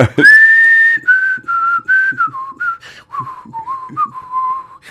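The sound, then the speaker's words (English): A person whistles a short tune, opening with a long held note, then a run of shorter, wavering notes. Breathy, airy noise sits under the whistle, with no talking. “Do you want me to whistle?”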